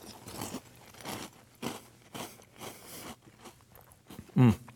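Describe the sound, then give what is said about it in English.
Crisp crunching as someone chews a mouthful of Cap'n Crunch's Crunch Berries sweetened breakfast cereal with milk, in a steady run of bursts with one louder bite near the end. No one speaks. “If I was going to pick one flavor of Crunch Berries to eat, I would probably pick red.”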